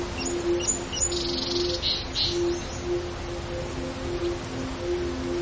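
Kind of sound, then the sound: bird, birds chirping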